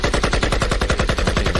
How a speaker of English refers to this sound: Let me let the gunshots ring out for a little bit. Let me get the AK. Here we go.